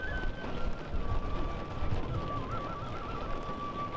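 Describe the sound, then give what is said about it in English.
Blustery wind rumbles steadily outdoors with a constant hiss like falling rain outside the Northwest Detention Center during a protest, while a thin, wavering whistle-like tone drifts faintly in the background. “Despite the rain and the wind, before long the streets outside of the Northwest Detention Center were flooded with people.”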